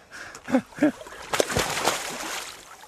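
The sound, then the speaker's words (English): A freediver gets into the water from a pontoon under Ben Bulbin, at 8 degrees, with one heavy splash, followed by a few seconds of sloshing and churning. Two short voiced sounds, like grunts or breaths, come just before. “gets into the water from a pontoon under Ben Bulbin and starts breathing up for his dive.”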